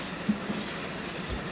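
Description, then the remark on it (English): A steady, muffled rumble of a massive train moving along the rails, with a couple of faint clacks early on and a low thump near the end; no one speaks. “Yeah, this train is massive.”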